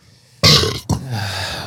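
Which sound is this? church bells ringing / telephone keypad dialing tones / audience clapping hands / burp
burp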